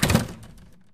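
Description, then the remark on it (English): A door swings shut with a solid, heavy thunk, followed by a short rattling decay that fades into quiet within a second. “And she went out, and the door shut.”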